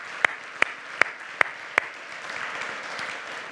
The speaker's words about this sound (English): Again, a round of applause would be really super for those folks. Thank you.